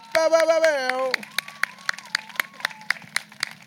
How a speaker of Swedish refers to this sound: Tack för att du kom. Tack. Ge en till stor applåd mina damer och herrar.